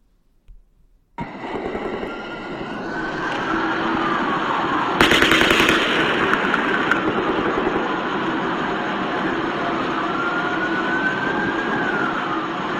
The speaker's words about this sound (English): Yeah, it does. It sounds like automatic gunfire.